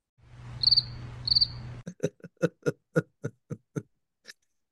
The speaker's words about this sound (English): This is where … plays crickets.